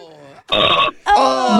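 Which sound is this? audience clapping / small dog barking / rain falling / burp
burp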